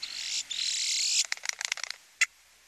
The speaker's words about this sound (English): But no matter, we can still easily identify common and boat-tailed grackles, glossy black blackbirds strutting about with dissonant voices.